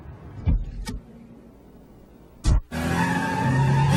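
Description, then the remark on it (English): A Kia Optima pulls up with its tires skidding after being driven very fast through city streets: a few sharp thuds, then a loud, sustained screeching roar of engine and rubber, with no talking. “Car pulls up.”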